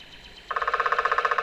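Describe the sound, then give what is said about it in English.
A downy woodpecker drums a rapid, even roll of about sixteen sharp taps lasting roughly a second, starting abruptly after a brief quiet moment, with no voices present. “Yet another woodpecker with an even drum. Looks like a downy woodpecker to me.”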